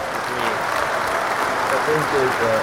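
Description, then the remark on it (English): Steady, dense applause fills the whole stretch, a loud wash of clapping with a few voices talking faintly underneath toward the end. “Oh, applause, baby.”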